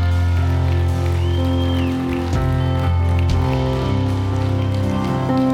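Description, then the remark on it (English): A church audience claps in a dense, steady patter that runs the whole time, celebrating salvation after a prayer, mixed with sustained keyboard or organ chords holding underneath; no one speaks. “And come on, let's clap because Jesus just saved me.”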